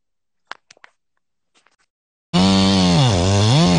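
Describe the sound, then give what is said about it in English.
A few sharp clicks and rattles, then a custom-built Echo 501P chainsaw roars to life, its loud buzzing engine note dipping and rising in pitch as the throttle is worked, with no talking. “This is a custom built saw.”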